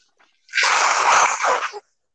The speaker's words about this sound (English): Excuse me one moment while I blow my nose.